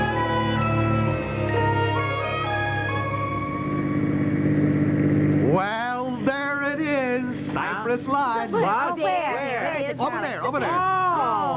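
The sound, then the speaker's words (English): A steady, droning car engine hums along at an even pitch, first on its own and then continuing beneath two people talking over it, in the radio serial The Couple Next Door. “Yeah, stop the car”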